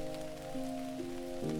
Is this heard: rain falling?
yes